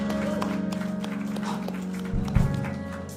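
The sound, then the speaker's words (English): A church audience at Dwelling Place Church claps together during a morning service in a dense, steady wash of hand claps lasting about three seconds, with sustained musical tones humming underneath and a brief louder swell near the end. “Let us clap our hands one more time.”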